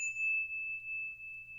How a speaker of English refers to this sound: he shared the actual bell from the recording of the song, as well as a few secrets to where he finds some of his studio gear. See if I can get a clean strike for you here.